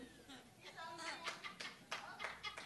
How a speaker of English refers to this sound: Thank you for clapping. One dude understands that I am saying the most truthful Thanks.